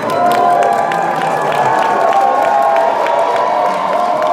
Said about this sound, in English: By 9:15 on the opening night of Lipstick Theater's Burlesque, a line had already formed from Lutkin Hall to the eastern end of University Place for the 10:30 show. If you thought the line was excited, just listen to the applause.